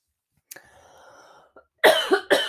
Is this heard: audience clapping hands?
no